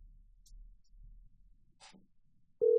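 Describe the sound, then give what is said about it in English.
A quiet low rumble with a few soft, brief noises, then a loud, steady phone call tone abruptly starts near the end and holds at one pitch as someone places a call. “Are you calling her again?”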